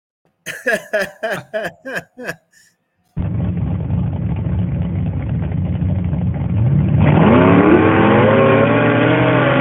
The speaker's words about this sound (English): That's two trucks going at it.